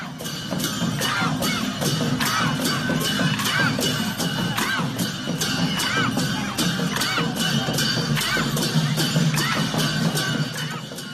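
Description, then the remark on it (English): A dense festival crowd roars continuously, with overlapping shouts and cheers rising and falling throughout, loud, with no single voice standing out. “and crowds, just so crowded.”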